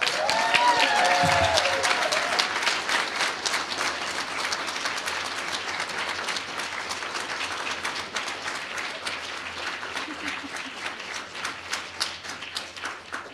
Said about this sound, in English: Please recognize Elizabeth and her important work with your applause.